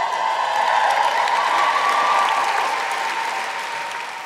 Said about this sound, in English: Just give us a cheer, cast of Amelia.